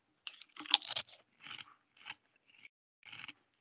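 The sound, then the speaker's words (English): Crunching of Kettle brand peppercini-flavored kettle-cooked potato chips being chewed, a loud burst of crisp crackles followed by several shorter, irregular crunches, with no talking. “weren't you one who said that they don't like listening to us chew?”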